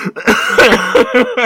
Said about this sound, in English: Okay. Don't cough at the mic. I'm so sorry.